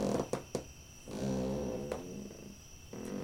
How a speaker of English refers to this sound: This cot is making farting sounds.